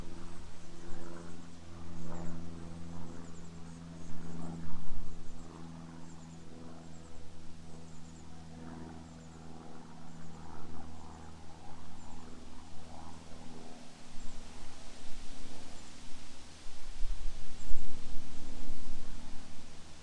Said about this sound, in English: I don't know if you can hear those leaves, but I'll let the leaves sing.